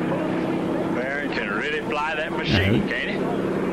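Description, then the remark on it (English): A steady, rumbling propeller-engine drone from a small plane flying very low overhead, loud throughout, with voices talking over it. “Quick cutscene to a plane flying. Real low.”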